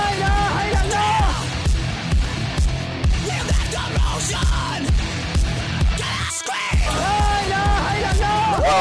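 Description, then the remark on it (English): Loud, wavering screams rise and fall in pitch over a dense, pounding backdrop, with a brief drop-out near the end before the shrieking resumes. “Scream!”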